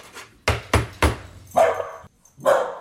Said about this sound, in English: Noise in the studio, Yeah. in my little studio, my dog's barking.